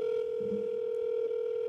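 A steady telephone line tone hums continuously and fairly loud for the whole moment, unbroken and even, with no voices over it.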